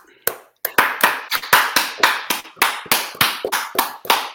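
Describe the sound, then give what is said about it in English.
A round of applause: roughly fifteen sharp, loud hand claps in a quick, fairly steady rhythm, each a crisp slap with no voices over them. “round of applause.”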